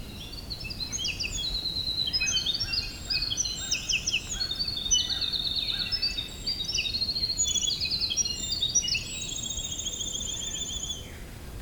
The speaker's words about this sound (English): Gray catbirds.